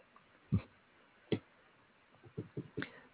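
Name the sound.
clock ticking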